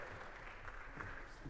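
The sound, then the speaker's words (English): An audience at Skillman claps steadily for a group of children, a dense wash of many hands applauding at once, fairly loud and sustained throughout with no voices standing out. “Give a round of applause to these wonderful kids.”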